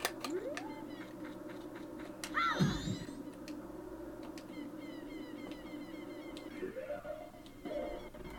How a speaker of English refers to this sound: There are neighborhood cats fighting outside. I can hear them yelling at each other. They will battle endlessly.